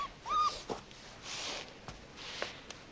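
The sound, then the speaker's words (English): A puppy gives one short, high-pitched whine near the start, then soft rustling and shuffling noises follow, with a few light taps. It is fairly quiet overall, and no one speaks. “And I brought you a puppy.”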